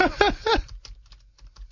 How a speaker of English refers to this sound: You hear me typing really loud?